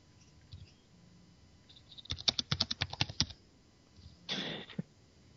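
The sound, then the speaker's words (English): A quick burst of about a dozen sharp, loud computer keyboard clicks in a rapid, uneven rhythm, followed by a brief clattering flurry of keys, with no one speaking. “Someone's tapping on their keyboard very loudly.”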